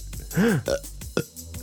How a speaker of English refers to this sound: That's like eight burps, an octoburp. I can burp endlessly.